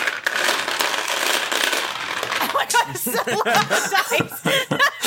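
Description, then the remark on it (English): Dice clatter and rattle together in a dice bag as they are taken out for rolling in a game, a dense, steady jangle lasting about three seconds before giving way to people chuckling and laughing. “Is that a dice bag or an ice machine at a Hotel 8?”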